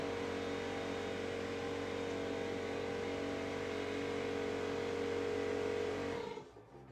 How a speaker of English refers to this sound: Hold on one second. I got to turn off this air compressor real quick.